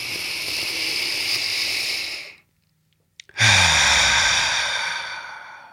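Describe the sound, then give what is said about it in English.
A long, deep breath drawn in with a loud airy hiss, a brief pause, then a full, forceful exhale that slowly fades, with no talking. “Or the next thing you know, taking a deep breath is like sliding down a mountain of chocolate and breathing in the freshest air from a pine tree you've ever felt.”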